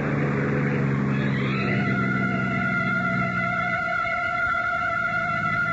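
A car engine revs up and pulls away, its steady hum rising in pitch as it accelerates, then settles into a constant drone, fairly loud with no voices.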